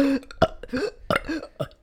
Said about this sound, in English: Yeah, it's like people who can like force burp. Well, I can force burp.